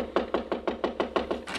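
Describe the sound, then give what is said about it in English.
Rapid, steady knocking on a wooden door: about ten even raps in quick succession at a regular rhythm, moderately loud, with no voices. “So I just kept knocking and knocking and knocking.”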